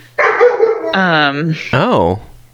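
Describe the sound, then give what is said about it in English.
A household's pet dogs bark and yowl in three drawn-out bursts, the later ones rising and falling in pitch like whining howls, loud, with short pauses between. “Oh my gosh, my dogs.”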